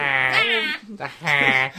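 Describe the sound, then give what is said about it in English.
A voice imitates a nerdy, honking, donkey-like laugh: two loud, nasal, bleating bursts separated by a short gasp, with no other sounds. “Another one is the nerd laugh, or like the laugh that Farkle does.”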